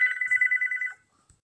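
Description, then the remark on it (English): An apartment intercom buzzer, buzzing in a grocery delivery, sounds in one steady, harsh electronic tone lasting about a second, then cuts off, leaving near silence apart from a faint low thump. “Sorry, that buzz in was my groceries. So that's the noise that you heard.”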